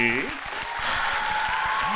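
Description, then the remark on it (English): A burst of clapping swells into steady, dense applause welcoming a guest to the show, with voices whooping and cheering over it for the whole stretch. “Gentlemen, let's have a nice warm round of applause for”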